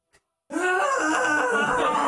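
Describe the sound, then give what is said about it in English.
After a brief faint click, a loud, sustained vocal groan erupts and holds steady, a strained, pained scream-moan lasting well over a second. “I start screaming too.”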